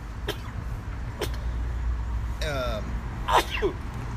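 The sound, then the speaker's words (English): Several short, sharp sneezes burst out one after another at irregular intervals, fairly loud over a steady low background rumble, with a brief voiced sound near the end. “Bless you again.”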